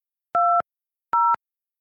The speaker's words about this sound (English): Okay, I'm dialing. Welcome to Telelink Conference Pro. Please enter your PIN.